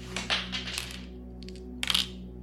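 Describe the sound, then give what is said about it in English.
Two dice are rolled, clattering and tumbling across a hard surface in a quick burst of small clicks, pause, then rattle briefly again before settling, landing on two threes. A low steady hum sits underneath. “What do I roll? Presence occult. Oh, I'm bad at this. That's two dice.”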